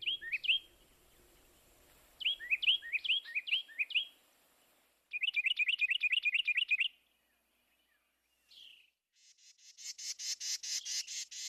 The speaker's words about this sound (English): I think the award for the loudest bird relative to body size should go to the wren, that small brown denizen of our backyards whose piercing voice can be heard bright and clear. That such a big sound can come from such a little bird is truly amazing.